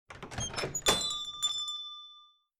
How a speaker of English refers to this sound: All right, so as Team Warehouse splits into Team Front Door, Team Back Door, we pan up to the sky and back to the little bodega in Five Points, where, Alistair, you hear the jingle of the door opening.